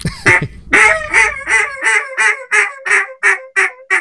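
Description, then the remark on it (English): A duck call blown to imitate a duck in a rapid series of about a dozen nasal, quacking notes, each ending in a high squeal known as the Cajun squeal, loud with no talking. “So yeah, I'll show you what the Cajun squeal sounds like. It's kind of a controversial note.”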